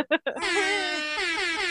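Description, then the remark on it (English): A voice imitates an air horn alarm, a joking 'partner alarm': two short clipped blasts, then one long, loud, brassy honk that wavers slightly in pitch and holds steady to the end. “Yeah, it's the partner alarm.”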